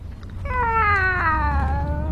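Felix the cat, shut in a cat carrier in a moving car, lets out one long, loud, drawn-out wail that starts around half a second in and slowly slides down in pitch, over a steady low rumble like an engine.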